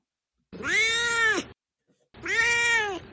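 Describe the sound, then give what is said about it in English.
Dorje, a cat, meows twice, each call long and drawn out with a rising then falling tone, loud, separated by a brief pause of silence. “Now it's time for Dorje's Corner, where my cat Dorje will share his opinions about the book.”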